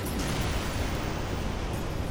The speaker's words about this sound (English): And the explosion goes off.